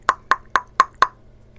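Five sharp knocks on a big maple leaf door, knocked for the first time, in a quick, even rhythm, each a crisp hollow rap that fades fast, then quiet. No one speaks.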